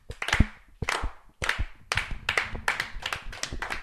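A slow clap by a few people: sharp, bright hand claps land roughly every half second, slightly out of sync, with softer scattered claps in between and no talking.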